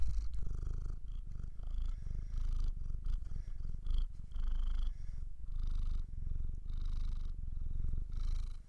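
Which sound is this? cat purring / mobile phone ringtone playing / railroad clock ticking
cat purring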